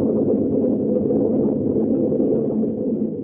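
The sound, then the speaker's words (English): Thunder rolls in a deep, continuous rumble just after a flash of lightning, holding steady and fairly loud for a few seconds before easing slightly at the end. No voices are heard. “There, we saw the lightning then. Now we know that thunder is coming.”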